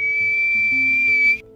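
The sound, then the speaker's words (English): A single shrill, steady note from an acorn whistle, held loud for over a second before cutting off, with a low droning hum underneath. “Kira blew a single shrill note on the acorn whistle”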